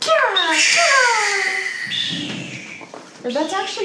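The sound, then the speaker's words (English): A person imitates a hawk's screech with a loud, high, wordless cry that slides downward in pitch, then trails into a lower strained tone before a short, rising squeal at the end. “That's actually a hawk's sound. Eagles don't tend to make sounds like that.”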